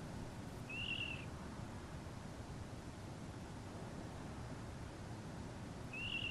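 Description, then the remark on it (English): Two short, high-pitched calls from a water rail on nocturnal migration, about five seconds apart, faint above a steady background hiss. “For example, if you listen to water rail migrating at night time.”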